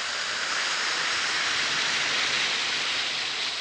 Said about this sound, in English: Drop one or two Alka-Seltzer tablets into a glass of water like this. Listen to it fizz.